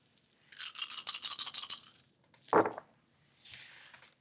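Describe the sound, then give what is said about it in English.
A handful of eight dice, two of them hunger dice, rattles rapidly for about a second and a half, then clatters out in a sharp burst, followed by a softer tumbling rattle as they settle. No one speaks. “Eight dice, two of which are hunger.”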